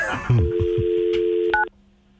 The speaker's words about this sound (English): Do you want me to call her on my phone? No. Siri, dial Kane's Chicken.